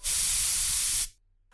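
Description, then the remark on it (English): A single sustained burst of aerosol spray, a loud, bright hiss lasting about a second before cutting off abruptly into near silence. “If you know what's good for you, spray the parasite before it kills you.”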